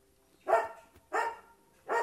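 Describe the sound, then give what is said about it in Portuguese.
A dog barks three times at a steady, unhurried pace, each bark a short full-throated woof with quiet pauses in between; nobody speaks. “Cachorro latino.”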